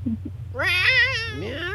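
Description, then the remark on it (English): Cats meowing for food: a loud, drawn-out, wavering meow, joined near the end by a second rising meow, over a low steady background hum. “You got some cats meowing for food.”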